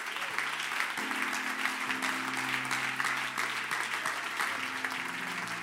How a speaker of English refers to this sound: Let's clap our hands to the Lord one more time.